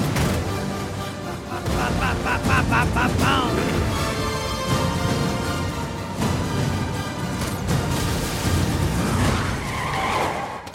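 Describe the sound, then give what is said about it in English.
An Aston Martin's tires skid and squeal loudly over a roaring engine in a movie car chase, with the screeching rising and falling through a dense, continuous din and a few muffled voices. “Did you see what car he has? Yeah, he has the Aston Martin.”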